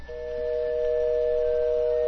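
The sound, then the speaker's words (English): An unusual phone ringing tone on a call placed back to a caller during a live radio broadcast: one unbroken, steady electronic drone with a low, doubled pitch, holding level for about two seconds before cutting off, with no voices. “That's not a ringing. A normal ringing. It isn't, but... Your phone has a problem”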